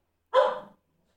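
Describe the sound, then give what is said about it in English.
A single short bark from Daisy, a female pet dog, fairly loud, with a sharp onset that trails off quickly, standing alone against silence. “Hey, Daisy. Aqua dog biscuits.”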